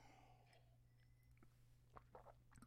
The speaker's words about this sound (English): I've got to take a sip of... this is grape juice, by the way. Not wine. It's grape juice.